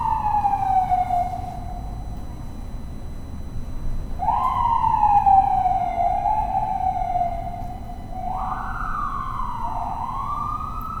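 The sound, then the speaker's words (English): An ambulance siren wails through repeated falling sweeps over a steady rumble of traffic, loud at first, then holding strong as it passes by. “That'll be each of us soon enough. In the back of that ambulance.”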